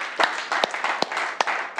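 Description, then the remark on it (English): At a Sunday night church service, a preacher claps for the audience in a steady, even rhythm: about five sharp claps spaced evenly apart, clear over a constant wash of background noise. “This is me clapping for you for being here with me tonight.”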